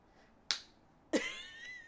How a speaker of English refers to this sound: I will explain that sound, seeing as this is not a visual medium. Yes. I just face-palmed harder than I thought face-palming was possible. It's like red now.